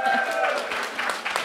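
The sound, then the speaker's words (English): An audience claps in a dense, steady burst of applause for a woman from the back of the audience coming up to share a crime story, with some voices and cheering mixed in, especially at the start, holding fairly loud throughout. “Give her an applause.”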